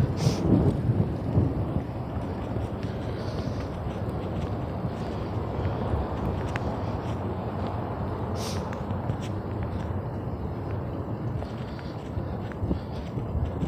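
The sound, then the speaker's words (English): A thunderstorm in Texas with steady, dense rain hissing throughout, backed by a deep, continuous rumble of rolling thunder. A few sharper crackles break through the wash of sound. No voices. “I swear this the only time a nigga be thinking about, damn, I should have paid for a parking spot when it rained.”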